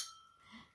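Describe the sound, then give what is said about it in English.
A single light clink of glasses touching in a toast at the start, leaving a soft, high ringing tone that fades away over a quiet, hushed background. “And here's to you. And here's to next year, a new beginning.”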